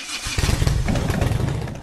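A motorcycle engine revs up loud, a rough, throbbing rumble that holds steady for a couple of seconds with no voices over it.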